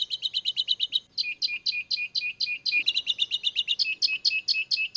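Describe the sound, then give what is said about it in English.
Rapid, high-pitched finch songs fill the air, a steady stream of bright repeated chirps and trills from several birds, clear with no talking. “She thought, God, why can't I tell these finches apart?”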